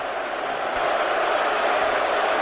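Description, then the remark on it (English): A large stadium crowd roars in a sustained, loud wash of noise, a dense and steady jeering din with no let-up and no voices standing out, as Terrell Owens drops a pass on 2nd and 3 in a playoff game. “Yeah, they've been showering him with a lot of noise every time that he's anywhere near the ball and when it's being thrown to him, and, you know, obviously a ball that should have been caught.”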